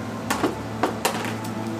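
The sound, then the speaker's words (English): Four sharp knocks on a wooden door, irregularly spaced in two quick pairs, clear over a low steady hum, with no voices. “But he knocks. You hear the”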